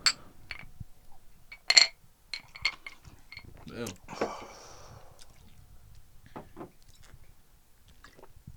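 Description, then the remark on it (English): Drinks being opened for a toast, with a brief fizzy hiss, amid several sharp glass clinks and small handling knocks, fairly quiet, with faint voices in the background. “Open up! Let's take a sip. Cheers.”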